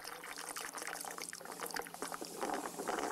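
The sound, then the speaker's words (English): Water swirls and gurgles in a steady churn as it flows in a spiral curve through a straight, dented pipe (a so-called Neumann pipe), with bubbly splashing textures that grow slightly louder toward the end and no voices. “Despite the fact that the pipe is straight, the water whirls in on itself. The water flows in a spiral space curve.”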